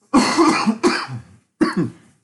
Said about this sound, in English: My cough has nothing to do with COVID. I have allergies from the seasons changing. And it's rested in my chest.